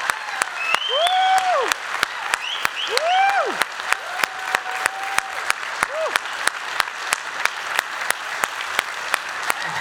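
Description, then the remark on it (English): An audience claps in a steady, rhythmic beat while voices whoop and cheer over it, loud and lively throughout. “You'll cheer louder when the Bills score a touchdown.”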